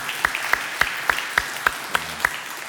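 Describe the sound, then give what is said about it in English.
Steady rhythmic clapping from a church audience in place of saying amen, about eight sharp even claps in quick succession over a low background hum, with no one speaking. “You can say amen or clap.”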